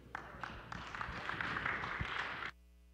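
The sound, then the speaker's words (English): An audience applauds in a dense, steady wash of clapping that holds for about two and a half seconds, then stops abruptly. No one speaks. “With applause, I like that.”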